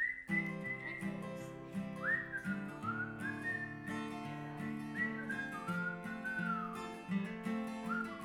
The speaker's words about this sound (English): Anybody whistle? Ready?